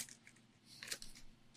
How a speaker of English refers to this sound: It is literally wrapping paper. You don't need a knife for that, man. Just fucking tear into it. You heathens.